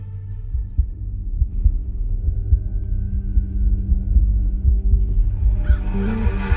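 A deep, steady heartbeat thumps over a low droning rumble, the muffled beats repeating in an even rhythm, with a faint hiss creeping in toward the end. No one speaks.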